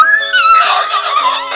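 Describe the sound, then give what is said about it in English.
A horse lets out a loud whinny, its shrill call wavering and trailing off over a second and a half, with no voices present. “As you hear them go”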